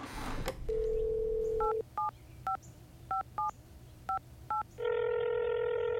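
A steady dial tone hums, then seven short touch-tone beeps of a phone number being dialed, followed by the ringing tone starting up. No voices.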